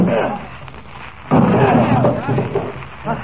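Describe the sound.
Men's voices murmur, then a single sudden heavy crash as men break in Rawson's door, followed by a dense rattle of splintering and more voices over the noise.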